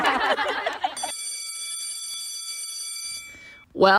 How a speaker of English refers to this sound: Well, that's the bell.